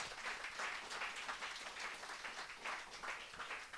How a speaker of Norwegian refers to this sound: Stor applaus til.